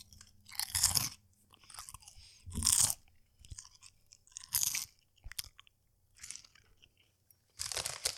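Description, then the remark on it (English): Loud crunching and chewing of Lay's original potato chips eaten for an ASMR video, with about five bursts of sharp crackly bites spaced a second or so apart and quieter mouth sounds between them, no talking. “All right, in today's ASMR video, we're going to eat some chips.”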